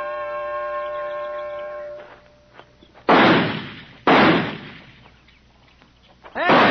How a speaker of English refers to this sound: All six shots in the tree and two of them on the target yet.